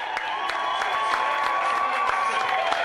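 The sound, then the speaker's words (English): A packed pavilion crowd hisses and cheers at once as the MC announces former Governor Ronnie Musgrove's name, a dense, steady roar of voices with scattered sharp claps and a few shrill whistles rising through it, loud throughout. “Then the MC announced former Governor Ronnie Musgrove's name, and the packed pavilion broke out into simultaneous hissing and cheers, each side waving the church fans and placards of their candidate of choice.”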